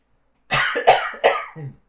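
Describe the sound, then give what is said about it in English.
A quick burst of three or four harsh coughs in rapid succession, loud and raspy, then silence with no talking. “Sorry, I just really had to cough.”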